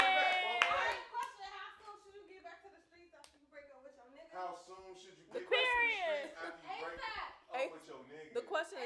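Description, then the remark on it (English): People clap in a few scattered, sharp bursts rather than a steady round, mixed in with loud voices and chuckling that carry on throughout. “Okay, clap it up. Clap it up. Clap it up.”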